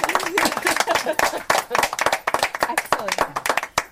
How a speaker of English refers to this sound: Let's give everybody a round of applause after that.